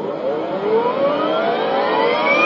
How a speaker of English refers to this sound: Course has been plotted and warp drive is ready to engage at your command, Captain. Engage warp. Warp engine engaged.